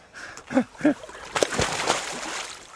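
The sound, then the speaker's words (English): A sudden splash of a diver dropping into water from a pontoon under Ben Bulbin, before breathing up for a breath-hold dive, followed by a continuing wash and slosh of disturbed water, with a couple of brief vocal sounds just before. “gets into the water from a pontoon under Ben Bulbin and starts breathing up for his dive.”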